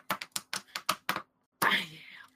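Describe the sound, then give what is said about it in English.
About seven quick, evenly spaced knocks on wood, sharp and dry, followed after a short pause by a louder, hissing burst of noise that slowly fades. “There's a, let me just tap on the wood.”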